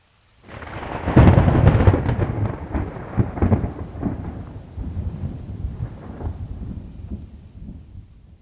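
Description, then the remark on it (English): A loud crack and rolling boom of thunder opens the storm, then rumbles on over a steady wash of rain for several seconds, with no voices present. “And you wonder, is a storm coming?”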